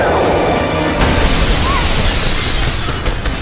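A loud crash as Batman and Vicky swing and smash through one of a cathedral's glass windows, with a sharp impact about a second in followed by a dense, rumbling wash of breaking debris that continues to the end.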